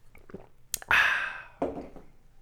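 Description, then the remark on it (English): Someone crunches down on an ice cube: a sharp crack, then a loud, gritty grinding crunch that fades, followed by one more crunchy bite. No talking. “That ice cube is really unleashing the jalapeno flavor.”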